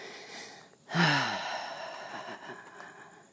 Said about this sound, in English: And you can still hear my breathing. Because I'm breathing past the bottle. The breath goes everywhere, motherfucker. When you're panting.